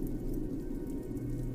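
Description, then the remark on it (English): Snow pelts a roof during a winter storm in a dense, steady patter, a continuous low rumbling drumming of many small hits with no voices present. “The whistling winds and the pelts of snow that land on the roof create a percussive beat.”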